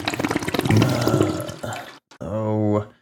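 A toilet flushes with a loud, rushing gurgle of water for about two seconds, then stops abruptly; after a short pause, a brief sustained vocal tone follows.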